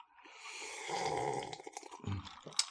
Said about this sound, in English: let me make sure you're aware I'm drinking this